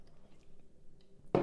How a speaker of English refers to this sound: As I take another sip of my beer.